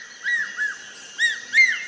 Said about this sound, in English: Now, a rhythmic cry draws attention to a large raptor.